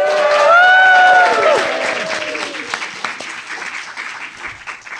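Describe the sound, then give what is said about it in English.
A live audience at a Worldcon convention bursts into clapping and cheering, with high whoops and shouts rising over dense applause that starts loud and gradually thins out over a few seconds. “And if you would like to clap or scream or say anything right now, let's do it.”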